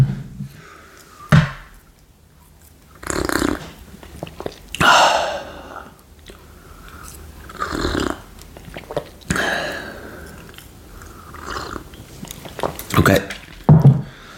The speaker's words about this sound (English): All right, hold on. Let me take a little quick sip.